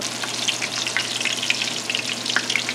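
Thin chicken breasts, cut in half and butterflied, fry in a pan with a steady, dense sizzle full of sharp crackles and pops, holding an even loudness throughout with no one talking.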